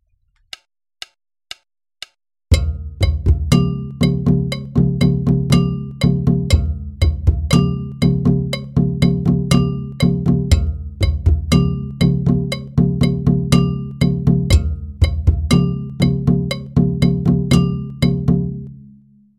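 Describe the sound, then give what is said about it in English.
Four sharp clicks count in, then a steady metallic bell pattern locks with deep, booming hand drums and a higher gonkogui bell in a repeating, unhurried halftime groove. In this B section the bell part keeps a steady beat while the gonkogui and drums play doubled time values, loud until the end. “In the B section, the bell part continues playing a steady beat, but the time values for the gonkogui and drums double.”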